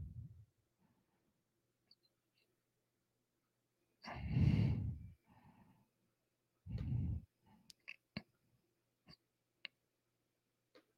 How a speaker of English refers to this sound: am I breathing? Dude, people get on my breathing so bad.